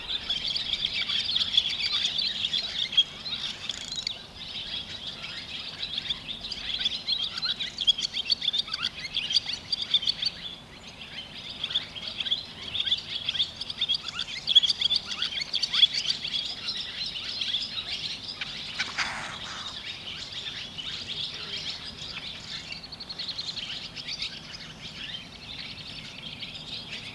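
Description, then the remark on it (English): A dense, steady chorus of high-pitched bird chirps and calls runs throughout, with overlapping tweets and a few brief sharper notes standing out, and no voices. “You can tell the difference between the males and the females by the plumage.”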